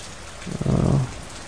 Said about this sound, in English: There's a beautiful storm coming in.